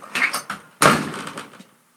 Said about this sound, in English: That's my Ray impression, because he always slams the door. She slammed the door.